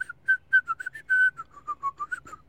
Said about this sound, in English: Isn't that the song you were whistling? Oh, got it. Those are okay. Two different songs. Got it. Sounds similar.